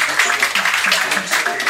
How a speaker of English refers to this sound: Your next comedian coming to the stage, one of my favorites, very funny people you guys have heard of on the Comptown podcast. Clap your hands right now for Nick Mullen, ladies and gentlemen. Nick Mullen.